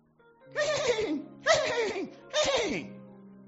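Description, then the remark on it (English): An old donkey that has fallen into an old abandoned well brays in three loud, rasping bursts, each call sliding downward in pitch before breaking off, with short gaps between them and no talking. “One day, the donkey fell into an old abandoned well and started neighing.”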